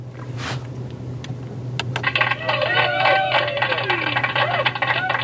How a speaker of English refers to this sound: I heard a cock.